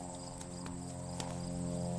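Crickets chirp steadily in the background of a quiet field outdoors, with a low constant hum and a few soft clicks. No one speaks.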